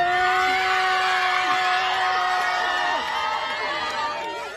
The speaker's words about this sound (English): around 75 parents and students quickly crashed the photo, lining up behind her in matching Mickey shirts. And just as the photo was about to be taken, they began to cheer. Happy birthday!